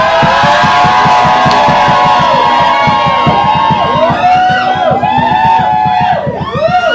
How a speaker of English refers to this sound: And when it was blown, the Bible says the people shouted. Can somebody shout in this place?